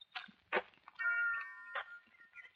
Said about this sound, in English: Mung Ba's steps slowed at the sound of the bell